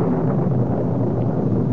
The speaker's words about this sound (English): Is that thunder? I think so. It just occurs to me, I've always been at my best during a thunderstorm.